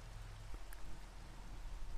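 Steady rain falls in a soft, continuous hiss with a low rumbling undertone and a few brief drops ticking through, no voices present.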